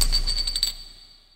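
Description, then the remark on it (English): Glasses clink together in a toast at Small Pond Studios, a quick cluster of bright, high-pitched taps that ring briefly and fade into quiet within about a second, with no voices. “So before we take this episode into hyperspace, cheers.”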